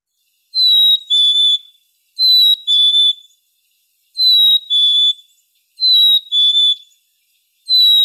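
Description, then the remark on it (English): A black-capped chickadee whistles its clear two-note song, repeated about five times at an even pace, fairly loud against silence. “that was indeed a black-capped chickadee, and they have a couple different songs”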